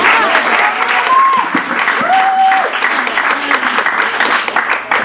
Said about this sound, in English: Let's please give them a warm round of applause.